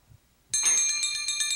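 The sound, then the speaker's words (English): After a moment of quiet, bells suddenly start ringing, loud, with a bright, rapidly pulsing metallic shimmer that continues steadily to the end. No one speaks. “Aw, but what good does ringing bells do?”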